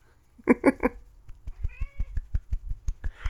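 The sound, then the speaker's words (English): A cat meows: three quick chirping calls, then a longer drawn-out meow, with a steady run of soft low thumps pulsing underneath and a brief rough cry at the end. “Cat, yes, I'm talking.”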